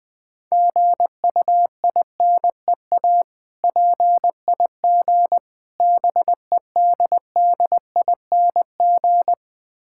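Morse code sent at about 20 words per minute: a steady, mid-pitched beep keyed into quick dots and longer dashes, grouped with short gaps between letters and words, with no voices.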